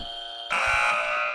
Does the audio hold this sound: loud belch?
no